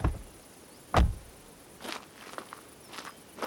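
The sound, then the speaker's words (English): The door of a white office building, home to the Noble Mushrooms farm, opens with a short latch click and a solid thump, followed by a few soft shuffling footsteps and faint rustling. No one speaks. “When I open the door, I'm greeted right away”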